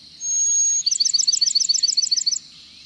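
Brown-headed nuthatch calls in Apalachicola National Forest: a thin, high whistle is followed by a quick, rhythmic run of about twenty squeaky chirps, clear with no voices.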